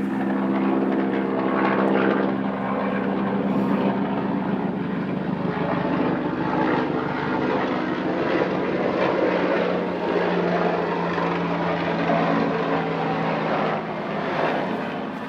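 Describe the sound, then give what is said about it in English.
A helicopter drones steadily, its engine and rotor producing a loud, continuous low rumble with a churning pulse, sustained throughout with no voices. “That certainly sounds like a military hospital. I mean, helicopter.”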